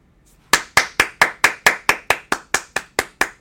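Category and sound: human body sound, one person clapping hands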